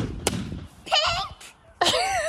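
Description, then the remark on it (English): A gender-reveal balloon filled with powder bursts with one sharp, loud pop, revealing pink for a girl, and moments later the high-pitched voices of sisters break into excited squeals and shouts. “Pop your balloon.”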